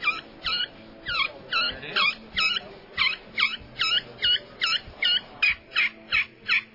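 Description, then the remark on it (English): A turkey kee-kee call played on the edge of a glass friction call called a derringer: a steady run of about seventeen high, whistling rising notes in an even rhythm, clear with no talking. “That's on a glass, and that's called a derringer. That Kiki's right up on the edge of the glass, guys.”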